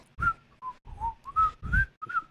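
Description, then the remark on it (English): A person whistles a short, bouncy traveling song of about six quick notes, each a clear tone sliding slightly in pitch, fairly loud with breathy bursts between notes. “Well, why does it count whistle? Traveling song.”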